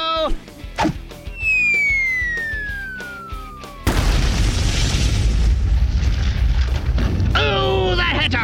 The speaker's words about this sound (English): Mighty Mila just used Zogzilla like a hammer right into the ground. All of Pflugerville is shaking like an earthquake.